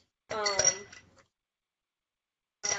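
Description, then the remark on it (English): Ice cubes clink and rattle into a mixing glass in a bright burst lasting about a second as a cocktail is being made, followed by silence and the start of another clink. “So we're gonna start with our mixing glass and some ice, as always.”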